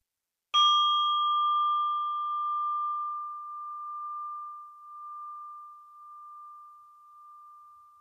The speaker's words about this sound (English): And I'm inviting the bell to end this practice.